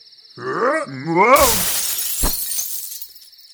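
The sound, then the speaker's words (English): A strained, groaning voice rises and falls, then a loud burst of shattering window glass erupts, followed by scattered tinkling shards and a heavy thud, over a faint steady high whine. “Why don't we put you through this window?”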